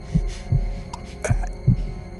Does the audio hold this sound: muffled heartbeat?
yes